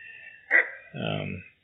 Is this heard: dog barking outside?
yes